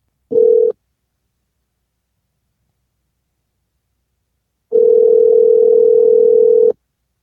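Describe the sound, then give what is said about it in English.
A short electronic telephone beep, a few seconds of silence, then a steady, loud, unbroken dial tone hums for about two seconds before cutting off. No one speaks. “I got to get RK on the phone. Hold on. All right. Call him.”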